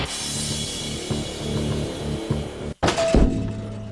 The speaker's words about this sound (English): You okay, sir? I'm Jerry from C Spire, and you're banging your head against our store window.